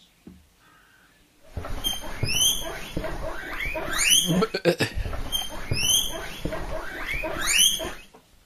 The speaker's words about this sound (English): Guinea pig.